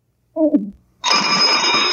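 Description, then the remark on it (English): A brief low sliding sound, then a loud telephone bell starts ringing with a harsh metallic jangle and keeps going steadily to the end. “Get the phone”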